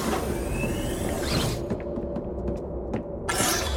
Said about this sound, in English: Please step into the room with your group. The door will shut behind you.